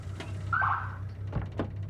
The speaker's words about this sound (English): She slams on the brakes, realizing she was going way too fast.